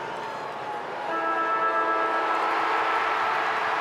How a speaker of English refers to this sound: The clock ticking. The siren will sound.